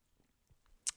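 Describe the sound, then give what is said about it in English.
A quick sip of coffee: near-silence, then two short, wet slurping bursts right at the end, the second sharper and louder than the first. “Just gonna have a sip of coffee, man.”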